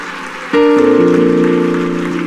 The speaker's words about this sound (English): If you love him, would you clap your hands to him? One more time.